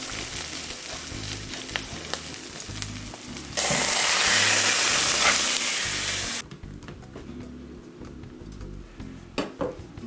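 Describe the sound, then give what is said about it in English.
While making stovetop pizza, a metal spatula is run underneath a tortilla crust to slide it out of a cast iron pan, over a steady sizzle, with a louder, hissing scrape lasting a few seconds midway and light clinks of metal near the end. “I mean, ideally the tortilla would fit right to the edge, but I'm gonna slide this puppy out of here. I'm gonna run the spatula underneath it.”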